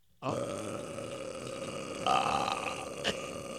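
long burp

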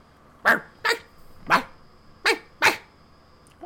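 dog barking

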